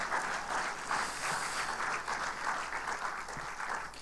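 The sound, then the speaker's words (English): Steady applause from a church audience, a dense wash of many hands clapping at an even, fairly loud level throughout the whole stretch, with no voices standing out, given in thanks to a volunteer who checks the sound. “So thanks, guys. Give him a hand again.”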